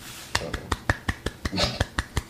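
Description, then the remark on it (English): A golf clap: a quick, steady run of about eleven light hand claps, evenly spaced and crisp, with a brief murmur of voice partway through. “I'm clapping my hands, bro. That's it's a golf clap.”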